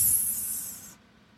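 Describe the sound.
A person hisses like a snake through the teeth: one steady, sharp sibilant hiss lasting just under a second, then cutting off abruptly to quiet.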